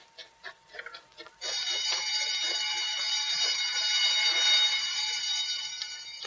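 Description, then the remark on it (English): A few sharp clattering hits, then a prison alarm bell starts ringing, loud and continuous, a harsh metallic clang that holds steady without pause until the end, raised as 13 convicts shoot their way out of prison. “Statewide alarm. Emergency. 13 convicts led by Earl Joyner have shot way out of prison.”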